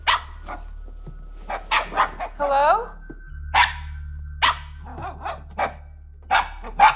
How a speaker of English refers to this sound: We do get the dog barking at the base of the stairs, like looking up the stairs, barking.